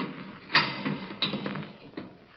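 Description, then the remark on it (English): A heavy door latch turns with a series of sharp metallic clunks, three main clicks spaced unevenly, with softer rattling and scraping in between. “I glanced at my watch at 11:15, and right after that, I heard the heavy latch on the door being turned.”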